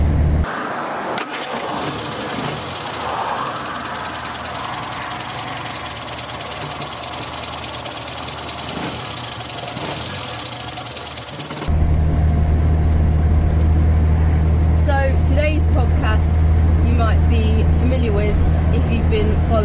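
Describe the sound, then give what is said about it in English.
An old car named Peggy runs throughout as it is driven on a long trip, a rough rumble that turns into a louder, steady low drone partway through, with faint indistinct voices and small noises over it. “Even though some people might not think they're as comfortable as modern cars, it was still quite a lot of fun.”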